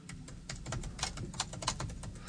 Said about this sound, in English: Hope we can get the computer sounds of me typing in. It's my ad lib.